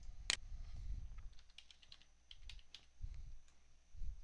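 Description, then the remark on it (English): Keys clatter on a computer keyboard as someone types Sidebar into the Windows Start menu search box, in a quick, uneven burst of light clicks, opened by one sharper tap, with a soft low rumble underneath and no voices. “If Windows Sidebar is not currently open on your screen, you can open it by clicking the Start button and typing Sidebar in the Start menu search box.”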